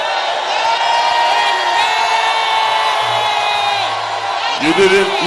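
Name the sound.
audience shouting and cheering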